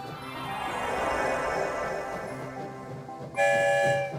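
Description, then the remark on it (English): A train passing through a tunnel rumbles along with a steady, dense mechanical roar that swells and fades, then a bright, sustained horn-like tone blares near the end. No one speaks. “We're headed for the Rainbow Tunnel that will take us far, far away.”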